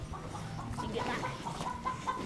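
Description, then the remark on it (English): Several chickens cluck and murmur continuously at moderate volume on a sheep ranch, a busy overlapping chorus of short calls with no one speaking. “And he's really good with the sheep and the chickens.”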